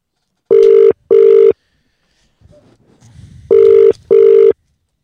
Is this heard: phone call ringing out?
yes